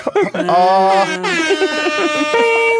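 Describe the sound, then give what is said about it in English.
A loud horn from an approaching train blares in several long, sustained blasts, its rich harmonic tones shifting slightly in pitch between blasts. No one speaks. “And then they just hear a train coming.”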